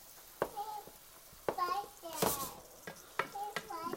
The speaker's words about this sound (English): So I'm stirring my ground beef again. It's actually pretty close.